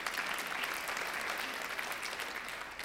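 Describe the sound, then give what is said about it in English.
An audience breaks into steady applause, a dense wash of many hands clapping at an even, sustained level throughout, with no voices standing out above it. “You can clap there too.”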